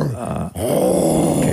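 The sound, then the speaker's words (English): A person growls and roars like a bear as a clue in a guessing game: a loud, low, rough vocal roar that breaks off briefly, then continues as a sustained guttural growl. “That's a moo bear. Roaring bear. You said it.”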